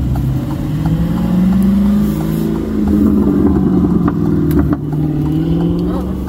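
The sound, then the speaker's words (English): A powerful Dodge Charger engine, not a Hellcat, roars, its low growl rising steadily in pitch as the car accelerates hard away from a traffic light, staying loud and continuous throughout. “I guarantee he was going to take off really fast.”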